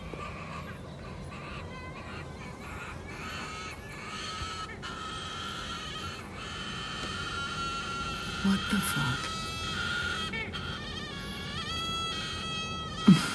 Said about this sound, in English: But this bird, if I can find a sound effect to liken it to, it would be the groaning of somebody in pain for a very, very, very long time. And at the end, it's a gargle, a shocking loud gargle.